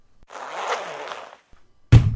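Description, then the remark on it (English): A single zipper is pulled in one long raspy stroke lasting about a second, followed by a short pause and then a sharp, thudding noise at the end. “So put a zip we got sound effect just before that.”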